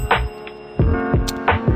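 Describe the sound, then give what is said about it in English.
A hand bell, rung by the host of the Jeff is Moody Show for listening drivers, rings in several uneven, clanging swings, each strike bright and metallic with a sustained ringing tone that carries between hits. No one speaks. “Please honk your horn for me while I ring my bell for you.”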